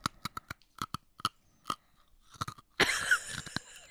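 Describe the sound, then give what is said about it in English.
Loud crunching of a crisp snack being chewed, with sharp irregular bites that build into a dense burst of crackling near the end. No one speaks. “How's the crunching going?”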